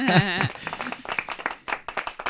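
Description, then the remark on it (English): A short round of applause from a small group, brisk irregular claps, opening with a brief vocal cheer or whoop before the clapping takes over. “That's an round of applause for...”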